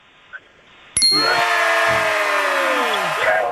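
A single bell is struck loudly after a quiet moment, its bright metallic tone ringing out and slowly fading over the next couple of seconds.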